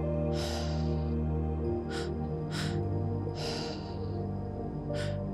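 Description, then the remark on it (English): Slow, steady breaths in and out through the nose as the breath slows back to a normal rhythm, about five soft airy bursts, clear over a low sustained musical drone with no talking. “Inhaling through the nose, exhaling through the nose.”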